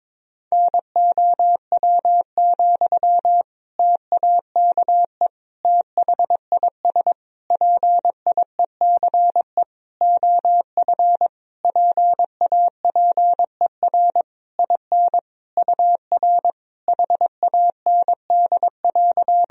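Morse code sent at about 22 words per minute, sending sentences made of common words and abbreviations: a single steady mid-pitched beep keyed rapidly into dots and dashes, with short gaps between characters and words, and no voices.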